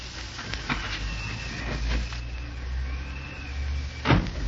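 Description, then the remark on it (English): A few close metallic clicks and rattles, like a key working a lock, followed by a door opening with a louder thump near the end, over a low steady rumble. “Here's the key. I locked the door when I left. Good. Open up.”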